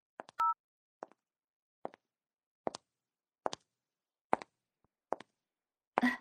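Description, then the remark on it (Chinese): Telephone keypad tones as a number is dialed to call family at home: a brief two-tone beep, then a steady series of short key presses roughly a second apart, fairly quiet, ending in a louder burst. “我给家里人打个电话”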